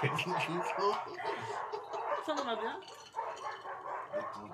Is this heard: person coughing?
no